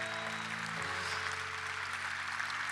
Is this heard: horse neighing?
no